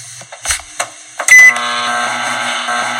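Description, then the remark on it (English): A few short clicks and beeps, then a microwave oven, set to 15 seconds to soften two sticks of butter, starts with a thump and settles into a steady electrical hum that runs to the end. “The whirring sound of the microwave was interrupted within seconds with a popping sound and a spark in the microwave that grabbed their attention.”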